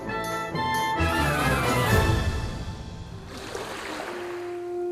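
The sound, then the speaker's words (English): Gentle water of the Sea of Galilee laps and splashes steadily around a boat at sunrise, a continuous wash of sound with soft sustained musical tones layered underneath. “Sunrise on the Galilee. Simon Peter prepares his nets for a day at sea.”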